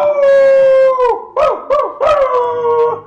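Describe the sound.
A long, wavering howl from a bunch of shirtless men in jeans howling at the full moon falls in pitch, then two short rising-and-falling howls follow before another drawn-out howl trails off, loud, with no talking.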